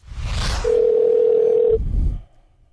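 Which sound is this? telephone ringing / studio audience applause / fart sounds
telephone ringing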